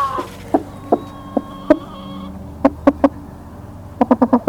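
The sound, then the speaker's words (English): A broody hen, one that wants to sit on the eggs, clucks in an egg box in short, throaty pulses, spaced out at first and then bunching into a quick run of clucks at the end, with no one speaking. “Oh, and look at the broody hen.”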